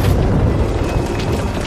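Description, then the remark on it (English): A loud, rumbling crash of Percy's runaway heavy coal trucks coming off the tracks, a heavy, sustained roar of clattering and booming noise that stays strong for under two seconds, with no voices. “Then Percy and his coal trucks came off the tracks.”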